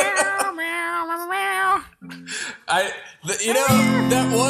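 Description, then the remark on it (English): A loud, sweeping melody built from meow-like tones gliding and wavering in pitch, layered over sustained notes like a grand fantasy film score, with brief pauses between phrases. “It's a cat music. Mixture of Star Fox and and Lord of the Rings.”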